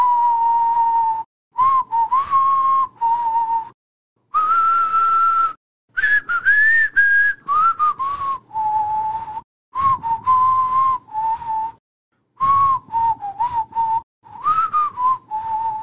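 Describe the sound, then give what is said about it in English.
A person whistles a tune alone, clear, in a series of short melodic phrases separated by brief pauses, the pitch wavering slightly up and down. “First of all, can you even whistle?”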